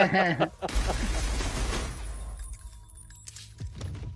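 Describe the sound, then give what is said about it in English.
After a brief voice, a loud, dense burst of rapid gunfire and crashing debris from a film erupts for about two seconds, then trails off into scattered, quieter clatter. “If you're listening to this, all you've heard is gunshots from the last 20 minutes.”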